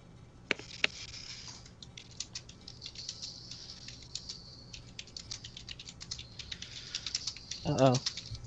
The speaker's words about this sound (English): Oh, God, somebody's typing furiously.